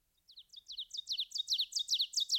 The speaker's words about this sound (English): Sometimes the bird would be far below me, sometimes near at hand, and very frequently the singer would be hovering 100 feet above the summit.